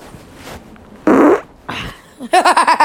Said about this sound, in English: Oh, God, I'm going to fart. Oh, Lordy. I'm going to fart.